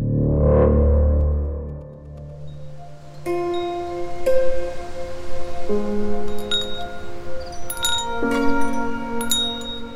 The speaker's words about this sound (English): Wind chimes made of little glass angels, and they're hanging over Odette's porch. I've paused here before knocking to listen to the crystalline ring their wings make as they swirl and come together in the fresh early autumn breeze.